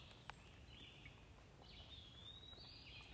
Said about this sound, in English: Just taking it in for a second. Just the birds and like the little bug sounds